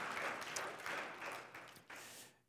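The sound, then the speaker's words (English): An audience claps together in a dense, steady patter of many hands, swelling slightly a few times before fading out after about two seconds, with no voices. “Who clapped just now?”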